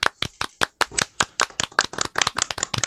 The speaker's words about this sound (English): ladies and gentlemen, let's give them a round of applause.